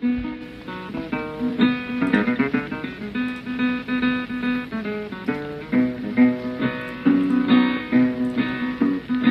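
An old blues record plays steadily, with a wavering melody over rhythmic strummed guitar, the sound thin and muffled with a faint crackly hiss running underneath.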